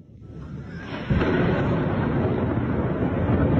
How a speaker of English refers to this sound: Here are some of the explosions in Kiev, for example.